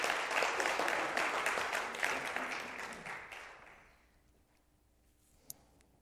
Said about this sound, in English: Yeah, give her a round of applause. She deserves it.